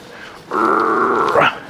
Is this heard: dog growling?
yes